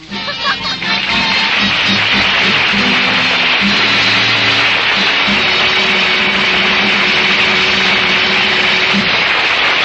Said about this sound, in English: But you can take along your outboard motor, too.